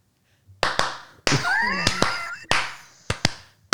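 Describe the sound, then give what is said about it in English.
Several sharp, loud hand claps ring out in an uneven sequence, each with a short fading tail. A brief, high squeaky warble appears between them midway through, and no one speaks. “So, and why don't you do a clap too, just in case?”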